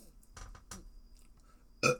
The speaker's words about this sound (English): Sorry, that was a little bit unprofessional. I do apologize. I don't think burping into the microphone is funny. I don't think it's cool or radical, you know what I mean? I think it's kind of immature,